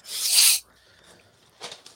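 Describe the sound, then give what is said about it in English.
A loud burst of papery rustling and rubbing, then a quiet pause and a softer, shorter shuffle near the end, with no voices. “That's the paper shuffling, my unprofessionalist.”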